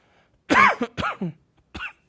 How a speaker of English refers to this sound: I'm still recovering from a cold, which was almost 3 months ago, and that cough is still there, so please bear with me. I'm not contagious.